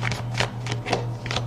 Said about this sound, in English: Let me shuffle this one more time.